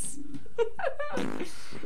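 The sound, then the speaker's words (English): A voice blows a wet, sputtering raspberry that imitates a fart, lasting about a second and a half, loud, with a brief vocal buzz before it and no talking. “Just making a fart noise because it's midnight and I'm tired.”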